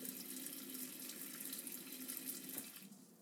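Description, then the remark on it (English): A tap runs steadily into a sink, a bright hissing rush of cold water filling the basin about halfway for an ice-water bath, continuous until it is shut off near the end. “So I'm going to fill my sink about halfway with cold ice water and then dunk my full Dutch oven into the sink full of this ice and water.”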